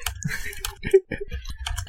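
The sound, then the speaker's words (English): Typing on a computer keyboard: a quick, uneven patter of sharp key clicks, some clustered and some spaced apart, moderately loud with no voices over it. “I promise I'll stop typing in a second, but for now, here's some ASMR.”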